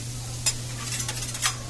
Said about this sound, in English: of course, your healthy helping, or not-so-healthy helping, of greasy spoon goodies, made fresh to order on a sizzling hot griddle.